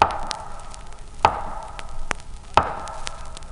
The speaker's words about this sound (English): Then I heard three slow, loud, distinct knocks at the head of my bed.